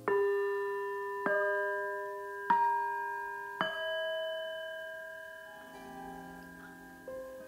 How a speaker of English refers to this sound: And so then, before I go on to my second mantra, I'll ring the Tibetan bells again.